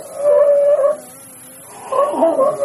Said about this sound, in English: Sea lion. Oh, that's right. They make kind of a dog sound.